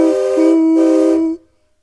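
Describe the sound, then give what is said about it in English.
A steam train whistle sounds one long, loud blast from a train off in the distance coming over a hill, a rich, steady chord laced with breathy steam hiss, then cuts off into silence. “And off in the distance, you see a smokestack coming over the hill.”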